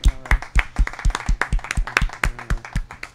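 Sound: audience applause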